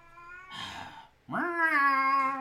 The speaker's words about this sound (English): just ignore the dying cat in the background. Yeah, I know. Can you hear the cat? We got a cat in the heat.